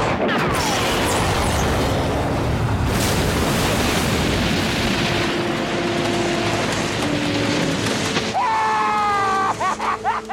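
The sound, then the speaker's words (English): A loud explosion of a tank blowing up in a film clip bursts out and rolls into a long roaring rumble with splashing, sloshing debris, fading after several seconds into a rising tonal sweep. “But there's an explosion which cuts off his bitch”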